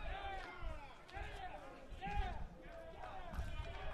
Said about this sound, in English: You can hear the BYU dugout applauding the at-bat for Cole Gamble and cheering on Achikar, who's now in the batter's box.